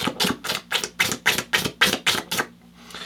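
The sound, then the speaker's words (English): A person imitates their 4.5-month-old pet drinking water after eating his food: about nine quick, evenly spaced wet slurping clicks in a steady rhythm, then a short quiet pause. “So he ate his food, and then he started drinking his water right as I'm trying to make my coffee.”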